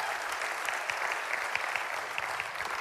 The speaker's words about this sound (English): So if you guys would, let's give a big round of applause for all the guys at the RCMU unit. Thank you guys for being here.